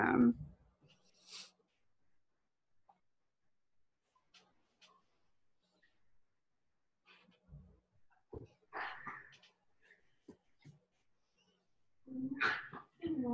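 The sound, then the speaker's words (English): Dogs play and scuffle on the floor, with short yips, whimpers and light tapping like claws on a hard floor, coming in intermittent bursts separated by quiet stretches. “And if you hear something crazy, my dogs are playing on the floor.”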